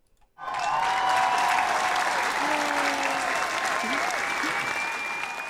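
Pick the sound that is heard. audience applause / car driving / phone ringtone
audience applause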